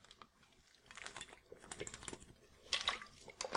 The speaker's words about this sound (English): I'll just take a sip of water here, sorry.